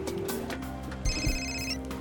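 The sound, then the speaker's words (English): A telephone rings in an office with a bright electronic trill, steady high tones held for about a second, clear with no talking. “I dialed your FBI phone.”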